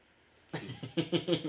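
A person coughs: one rough burst, then a quick run of three sharper coughs in a row, fairly loud against an otherwise quiet background.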